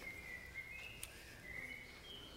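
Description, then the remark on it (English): Faint, high chirps and thin whistles from several birds overlap in a steady chorus, like a treeful of birds calling at once, with no one talking. “It sounds like there's a lot of birds in here. Oh, it kind of sounds like a tree full of birds.”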